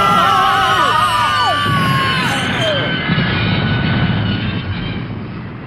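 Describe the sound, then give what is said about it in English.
A fairground train crashes in a loud, continuous roaring rumble, with shrill swooping whistles and whoops riding over it early on, then a dense clattering wash that slowly fades. “Because we're going to crash!”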